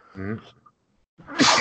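A single loud sneeze: a brief voiced intake, a short pause, then a sharp, breathy burst that ends abruptly.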